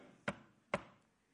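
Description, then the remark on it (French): Two sharp knocks on a door, spaced about half a second apart, each a crisp thud with a short ring, over a faint low background hum and no voices. “On toque deux fois sur la porte du ciel.”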